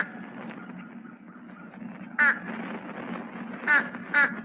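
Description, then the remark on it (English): A fish crow gives three short, nasal calls, one on its own and then a quick pair, moderately loud over a steady low rumble of background noise. “Page 118, Fish Crow.”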